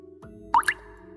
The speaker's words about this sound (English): Huh? A water droplet sound? That again? I didn't hear anything.